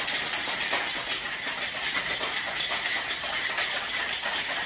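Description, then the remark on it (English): A cocktail shaker holding a strawberry cocktail with torn basil leaves and simple syrup is shaken hard and extra long without pause to break up the strawberry, giving a steady, dense rattling hiss with a fast, even rhythm and no voices. “We're gonna shake extra long today because of this strawberry in this glass.”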